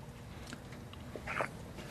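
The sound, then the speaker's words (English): A short sip of water: faint wet mouth clicks, then one brief slurping gulp near the middle, over a quiet hum with no talking. “And then another thing that happened later on, hold on, I'm gonna have a little sip of water.”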